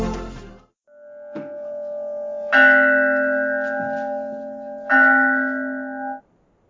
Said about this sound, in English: So the bell rings, and it takes us into the sacred moment.